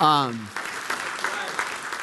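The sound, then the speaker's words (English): An audience in a church breaks into steady applause, a broad wash of clapping that fills the room after a brief voice-like tone at the start. “Now there you could clap. You could clap right there.”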